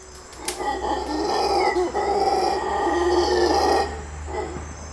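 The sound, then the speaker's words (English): A howler monkey lets out a loud, sustained, raspy howl lasting several seconds, rough and roaring in tone with a brief dip midway, then fading off. No one speaks. “Well, they've been given the right name because they certainly do howl.”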